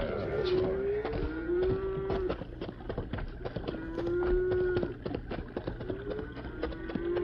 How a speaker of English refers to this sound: You hear that herd of cattle?